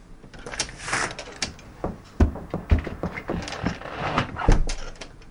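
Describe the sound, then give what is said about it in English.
A door is opened, with a series of rattling mechanical clicks and shuffles punctuated by a few solid low thumps, and no one speaking. “Why are we walking and talking? To answer the door.”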